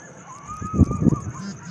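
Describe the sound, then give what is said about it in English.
Coyotes call in a short cluster of rough, yipping bursts, with a thin, wavering high tone running faintly underneath. The calls rise briefly in loudness, then trail off. “There's some coyotes.”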